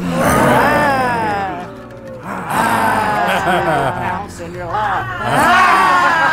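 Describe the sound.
Several people doing the lion laughter of laughter yoga let out loud, growling lion-like roars in three long overlapping bursts, their voices sweeping up and down in pitch, with short dips in loudness between the bursts.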